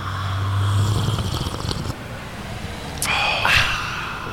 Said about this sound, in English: I just want to take this sip with everyone in San Francisco.